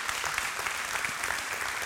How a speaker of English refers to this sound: Round of applause.